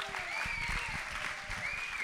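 An audience breaks into a steady round of applause, dense clapping from many hands holding an even, moderately loud level throughout, with a high whistle rising above it twice.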